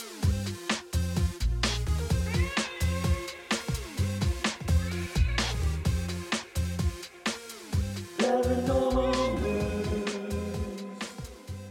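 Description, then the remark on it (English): A bouncy intro music jingle with steady drums, and near the end a drawn-out cat meow rises and falls above the instruments, clearly audible in the mix. “I never want to talk over the cat because I love the cat part of that.”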